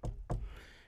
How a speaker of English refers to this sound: Let's knock on some wood here.